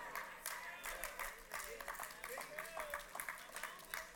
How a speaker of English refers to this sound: I got six women clapping, the men are scared.